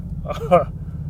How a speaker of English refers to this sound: All right, so in a traffic jam on Interstate 40, sucks.